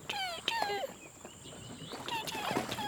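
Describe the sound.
A voice imitates a hatchling crocodile's chirps: two quick bursts of high, squeaky, warbling calls with a short pause between them, fairly loud.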